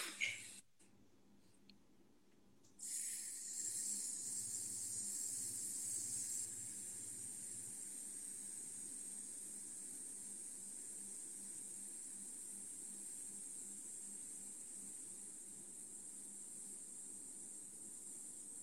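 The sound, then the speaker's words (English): After a slow, controlled breath in through the nose, a long steady hissing "sss" is made on the exhaled breath, a human voice imitating a hiss, continuing slowly and evenly for many seconds until the breath is gone, after a brief pause at the start. “And breathing all the way in, and then all we're doing is making that S sound slowly and steadily until the breath gone.”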